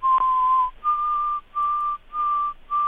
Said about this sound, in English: And my yard now is filled with white-throated sparrows, and they're whistling up memories of past falls. They do that.